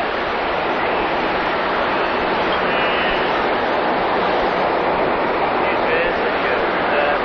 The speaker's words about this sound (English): Wow, look at these jets of water underneath us here. Yeah. It's like a high-speed boat, huh? Yeah. We're zooming right along in a couple knots.